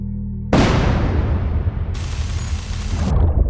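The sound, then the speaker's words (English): A heavy explosion from shelling bursts in after a low hum, followed by a long rumbling roar with crackling debris that stays loud for several seconds. No one speaks. “So basically, as the shellings and explosions are going on, the infrastructure can literally physically be breaking down, which can cause internet disruptions.”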